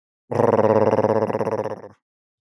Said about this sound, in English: The figure stood still, giving only a growl as Cannoli approached.